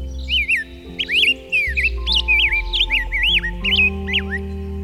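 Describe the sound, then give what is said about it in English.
A grosbeak sings a continuous run of sweet, warbling whistled phrases, clear, over a soft bed of sustained, shifting musical tones. “…”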